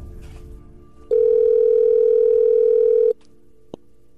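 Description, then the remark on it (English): A loud, steady telephone dial tone as a phone call is placed, holding for about two seconds and cutting off abruptly, followed by a single short dialing beep against faint background noise. “I called up Gary on Monday to find out more.”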